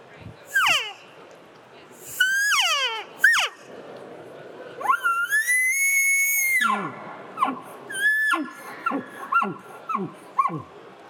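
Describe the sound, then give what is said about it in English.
Elk cow calls blown on an Easy Cow diaphragm reed of middle-of-the-road stretch and thickness: a run of high, nasal mews, several sliding downward, one long held whine in the middle, then quicker short chirps, shifting between softer and louder. “You can cow call soft with it, but you can also get pretty loud with it.”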